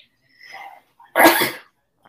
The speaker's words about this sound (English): I'm about to sneeze. I'm sorry.